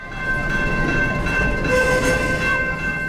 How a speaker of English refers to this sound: We caught up with the train in Canoe, where the community came together for a big celebration. A huge welcome for the CP Rail holiday train in Canoe.